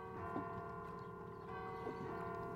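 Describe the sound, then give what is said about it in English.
The bell of a clock tower in Silvershore, the city's tallest building and a historical landmark, rings with a sustained, droning metallic tone, its harmonics hanging steadily over a faint rumble and a few soft clopping sounds. “Just follow the ringing.”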